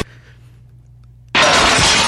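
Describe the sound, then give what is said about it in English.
After a low, quiet hum, a loud crash of a glass breaking, a sound from a music album, bursts in suddenly and fills the rest of the moment with bright, noisy debris, unaccompanied by any voices. “That was a glass breaking because that it was off of the album ….”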